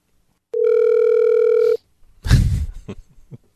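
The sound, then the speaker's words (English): A steady, mid-pitched telephone dial tone hums for just over a second after a call drops, then cuts off; a short, loud, rough burst of noise follows shortly after. “Well, that one disconnected by itself.”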